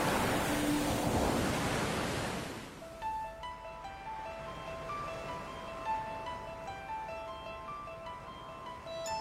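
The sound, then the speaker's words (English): A loud ocean wave surges and crashes in the first few seconds, then settles into a softer, steady wash of surf, with faint sustained tones drifting over the water noise, marking the Just a Minute segment of the Sports Joc Show. No one speaks. “When you hear the sounds of the ocean, it's a Sports Joc Just a Minute event.”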